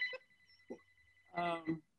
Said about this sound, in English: I'm sorry, I think I hear my phone ringing, but that's okay. That's fine. Okay. Yeah, that's my landline, which I never answer anyway.